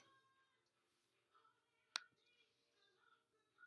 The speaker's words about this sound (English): My dog and cat are chasing each other. It's pretty good.